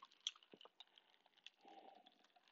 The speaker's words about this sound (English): Excuse me, everybody. Take a sip of my coffee.